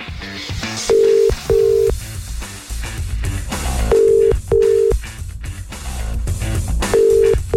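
A telephone ringback tone, from a morning radio show calling a listener to wake her, repeats in paired bursts, three cycles of two short tones with pauses between, over background music, and the call goes unanswered.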